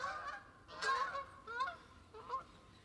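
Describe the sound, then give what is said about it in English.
Several geese honk in a loose series of harsh, nasal calls, moderately loud as they fly overhead, with no one speaking. “as the geese, as the geese fly over us.”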